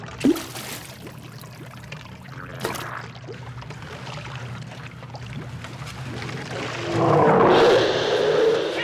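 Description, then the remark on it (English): Sewage water sloshes and trickles steadily against a low rumbling drone, then swells into a louder churning splash near the end as someone goes down into the water, with no voices present. “we're left with just the sound of sewage.”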